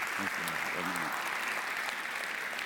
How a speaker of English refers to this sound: Thank you, guys. Give them another round of applause, if you would. Thank you, guys.